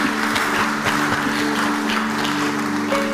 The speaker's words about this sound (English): Give the Lord a clap offering somewhere.